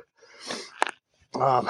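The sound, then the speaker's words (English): Heavy, labored breathing of someone climbing steep stairs during training: a long noisy exhale, a couple of sharp thumps like footfalls, then a loud voiced, groaning breath. “Getting that, just breathing heavy.”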